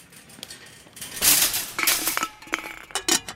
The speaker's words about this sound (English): When one of the wheels slipped off the pavement and the entire trolley turned on its side before crashing on the floor.